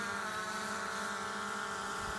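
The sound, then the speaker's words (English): A drone flying past gives a steady, high buzzing whine with layered harmonic tones that holds fairly evenly across two seconds, with no voices over it. “There goes the drone.”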